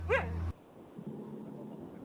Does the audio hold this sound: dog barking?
yes